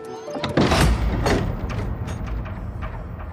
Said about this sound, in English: Arriving at the room, Toho opens the door, ushers Turco in. Then he goes in and closes the door.